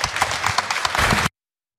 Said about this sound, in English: The applause there